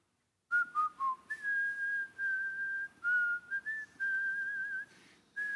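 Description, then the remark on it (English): A man in Romania whistles a slow hymn tune alone, clear, with sustained, gently sliding notes grouped into short phrases separated by brief breaths. “he's whistling Blessed Assurance”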